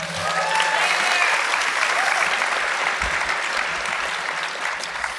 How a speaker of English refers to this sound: Give them a round of applause, everybody.